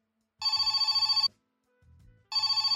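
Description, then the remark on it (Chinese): A classic telephone bell rings in two loud bursts with a pause between, each burst a rapid trilling clatter, clear with no talking; the telephone of the Zhang residence. “电话声响了起来，我浑身一颤，拖着脚步走到电话旁接了起来。”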